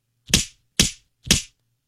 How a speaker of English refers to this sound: It's a meat slap. Right across the face.